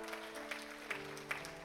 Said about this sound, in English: Let's give Beryl a round of applause. Come on. Come on, Beryl.